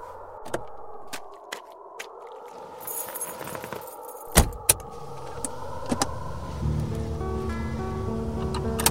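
A car's front passenger door unlatches with a couple of sharp clicks and a thunk as it is opened for a passenger, followed by a low engine hum and faint chiming tones inside the vehicle.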